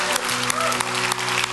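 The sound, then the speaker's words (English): An audience at Hope Chapel claps steadily for God, a dense wash of many hands with crisp transients throughout, over a low sustained musical tone and faint voices. “Come on, if you believe that, give God a big clap.”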